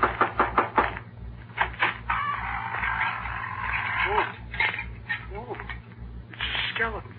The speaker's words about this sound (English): No, we're going in to get the Wicked Witch. I better knock on the door.